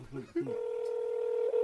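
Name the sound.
telephone dialing tones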